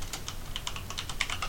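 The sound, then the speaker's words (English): Rapid, uneven clicking of keys on a loud computer keyboard as someone looks up an actor's name from Stranger Things, fairly loud, with about a dozen distinct keystrokes in quick succession and no voices. “My keyboard's really loud.”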